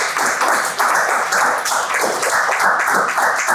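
A crowd applauds steadily, a dense, continuous wash of many hands clapping at a fairly loud, even level for a few seconds, with no voices heard.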